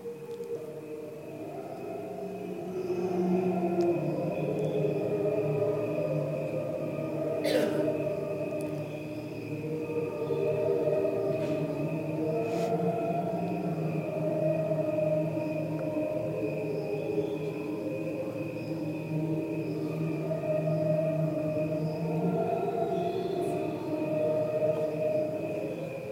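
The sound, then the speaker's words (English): Two layered recordings of ordinary crickets, one normal and one slowed right down, with nothing else played, form a continuous drone of low, warbling tones, almost choral or whale-like, sustained at steady loudness with a few brief clicks and no voices. “This is just the sound, that cricket sound we hear, we're so used to, slowed right down.”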